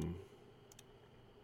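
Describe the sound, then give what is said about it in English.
Two quick, soft keyboard clicks land close together, following a brief low thump at the start, with a quiet background in between and no talking, as someone types on a computer in the Edge web browser to sign in. “Yes, that's me typing.”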